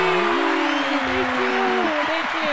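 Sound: hand clapping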